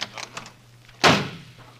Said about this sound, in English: That door slam wasn't Robert. It was Tony Curtis leaving the studio.